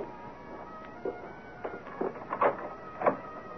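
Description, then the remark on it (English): Knocking on a back door, a series of irregular, fairly muted raps spread over a few seconds, with a steady low hum and no voices. “Someone's at my back door.”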